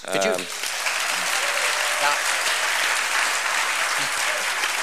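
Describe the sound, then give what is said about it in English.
An audience applauds steadily for about five seconds at the mention of RAGBRAI, The Register's annual great bicycle ride across Iowa: a dense, even wash of many hands clapping at constant loudness, with a short burst of voice right at the start. “Sure, you're applauding, but how many of you make that ride?”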